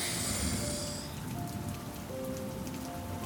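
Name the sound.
rain falling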